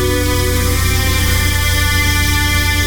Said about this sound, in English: This isn't ordinary music. Can you hear the hidden low tones in there? This is music from Fizz, the world's most advanced sleep and power nap system.